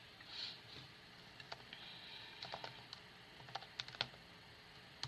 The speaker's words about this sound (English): You guys hear my keyboard?